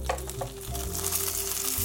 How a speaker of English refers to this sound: Again, we're just gonna let that fry up for a couple minutes. Smells so amazing here. I love the sound of the batter sort of sizzling in this oil.